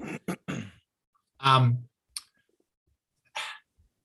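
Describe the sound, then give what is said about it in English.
A person coughs several times in quick bursts, followed by a deeper throat-clearing rasp and a couple more short coughs, with quiet pauses between. “Sorry, I have to cough again.”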